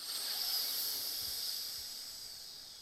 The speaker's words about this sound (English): So you're going to hear that I'm all bunged up at the minute because I've blocked one side of my nose. So I'm breathing in through my left nostril.